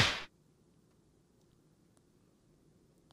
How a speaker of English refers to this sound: had to do that slap for Shea Sharp.